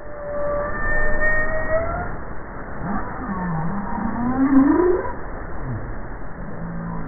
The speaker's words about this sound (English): I hadn't expected a cross between a truck motor turning over and an eerie siren. All whales produce calls. And generally they're short, and they occur in short little sequences, and they occur in exchanges.